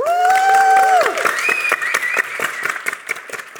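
A crowd at the close of a Blockchain Insider Live event cheers loudly, with a high rising whoop up front, then scattered rapid clapping carries on as the cheering fades slightly, no speech over it.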